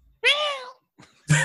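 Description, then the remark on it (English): A single drawn-out cat meow from a cat inside a crate, loud, lasting about half a second, followed after a short pause by a brief burst of another sound. “There was a cat in there, though.”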